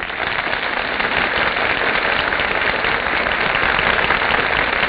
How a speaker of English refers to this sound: That applause, ladies and gentlemen, is the audience's greeting to our stars who are now entering from the wings.